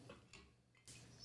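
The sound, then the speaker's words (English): Glasses clink together a few times in a toast, short bright taps with a high ringing tone lingering after the last one, with no talking. “How about a cheers?”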